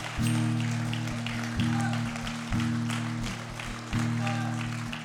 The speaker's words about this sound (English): Can you give the Lord a hand clap of praise this morning?